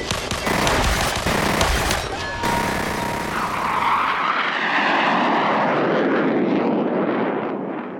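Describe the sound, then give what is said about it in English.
Rapid bursts of machine-gun fire crackle for a couple of seconds, then the loud, steady roar of two Hellcat fighter planes approaching from the south sweeps past overhead, its high edge slowly fading as they fly on. “If you're the two ship of Hellcats approaching from the south.”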